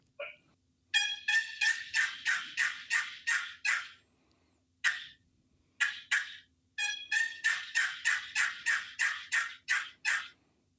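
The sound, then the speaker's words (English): A turkey yelp sequence made on a hunting call: two long runs of evenly spaced, raspy yelps, about eight each, with a few short separate notes between, loud and clear with no talking. “I like to soft yell, but a plain yell.”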